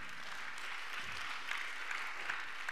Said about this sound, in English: Men or women? Men or women? Clap for the men.